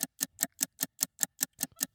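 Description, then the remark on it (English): A game timer ticks steadily and loudly, about five crisp ticks per second in an even mechanical rhythm, timing a round of a word game, with no voices over it. “All right, start the clock.”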